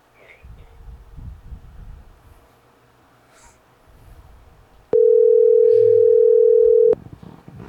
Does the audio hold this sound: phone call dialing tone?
yes